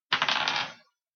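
A quick clatter of several dice rolled for damage in a tabletop role-playing game, tumbling across a hard tabletop, a dense rattle of small impacts lasting under a second before settling into silence.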